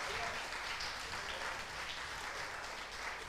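A crowd applauds steadily for the men who held a successful dinner meeting the day before, many hands clapping at once in a dense, even wash of sound that holds at a constant level throughout, with no voices standing out.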